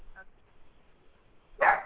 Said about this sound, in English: Pick. I heard that. That dog bark sounded like it said pick.